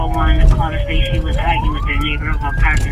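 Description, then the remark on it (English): A police squad car siren wails loudly, its pitch sliding down then sweeping back up, over a heavy rumble of the car speeding to a report of a neighbor firing a gun, with faint voices underneath. “I'm in a squad car with Officer …, speeding towards people who say their neighbor fired a gun at them”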